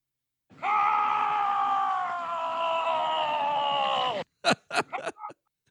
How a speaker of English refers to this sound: And so we have since cut this drop of me skiing, straight lining down a mountain, screaming this.